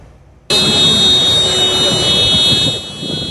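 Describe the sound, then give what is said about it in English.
A car alarm suddenly blares on, a loud, steady electronic shriek that holds without pause over a noisy outdoor background of rumbling and rushing sound, in Athens, Greece, after a flash flood roared through two suburbs. “Car alarms shriek in Athens after a flash flood roared through two suburbs just 3 days after deadly wildfires killed dozens in Greece.”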